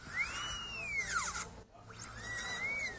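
A high-pitched drill whine swoops down in pitch, cuts out briefly, then spins back up and levels off into a steady shrill tone, with a low hum underneath and no talking.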